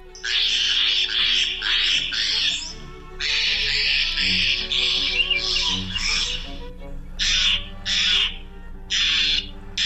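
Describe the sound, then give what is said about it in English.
A Steller's jay gives a series of harsh, grating calls that repeat in rapid bursts, loud, with brief pauses between groups of raspy shrieks; no one speaks. “The blue jay's vocalizations are sometimes described as harsh and strident, but they're downright musical compared to these calls of the Steller's jay.”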